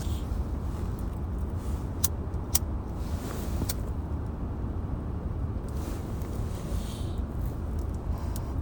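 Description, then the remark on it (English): A couple of sharp lighter clicks as someone relights a spliff, over a steady low rumble of a car interior; a third fainter flick follows a moment later, with no one speaking. “So let me at least mind my own business and relight this spliff, because shit, in case anything happens, I don't know nothing.”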